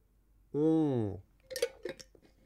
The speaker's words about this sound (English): And just so you know, I'm not obsessively drinking this water. I have to drink it because of a certain special circumstance that's relevant today for y'all. And plus, it's just so good.